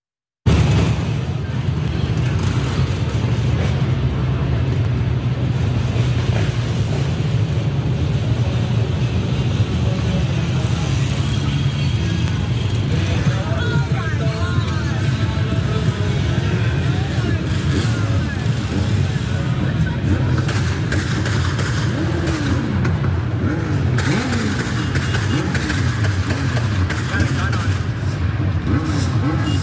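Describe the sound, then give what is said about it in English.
Motorbike engines drone and rev around a woman's car with her young children inside, next to City Hall in Philadelphia, as a biker attacks it: a steady loud rumble with rising and falling pitch sweeps, with indistinct voices mixed into the traffic noise. “A biker attacks black mother's car with her kids inside.”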